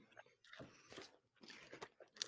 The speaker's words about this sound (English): And I did the beef franks in a in the toaster oven also. So we'll see if we can get a crunch on this.